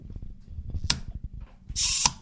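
A wind-up toy monkey whirs with a fast, steady mechanical ticking, broken by a sharp clack as it flips, then a brief high buzzing whir before another click.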